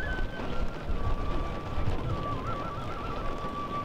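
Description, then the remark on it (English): Steady rush of heavy rain with wind buffeting the microphone in low rumbling gusts, continuous throughout, a thin wavering whistle-like tone running faintly above it, outside the Northwest Detention Center, an ICE detention facility, during a protest. “Despite the rain and the wind, before long the streets outside of the Northwest Detention Center were flooded with people.”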